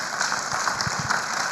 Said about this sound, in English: Can't we give the Lord a mighty clap of praise?